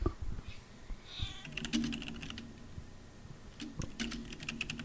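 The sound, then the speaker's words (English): A cat makes low, drawn-out, unhappy vocal sounds, somewhat faint, in two stretches, while sharp keyboard-like clicks tap away in the foreground. “I can see her little like waves nightly on the thing. It's like so small. What are you mad about? Kitty.”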